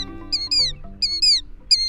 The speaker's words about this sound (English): The rhythmic cries of a killdeer are familiar across most of the country in spring and summer. It's our most often seen plover, the one with the double dark breast bands.